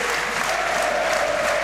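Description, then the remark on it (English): Loud, steady roar of a football stadium crowd during a Wrexham versus Stockport match in the 79th minute, a dense continuous wash of cheering and noise with a faint sustained tone running through it, no clear individual voices. “Here's McFadden then, as the crowd again making the noise.”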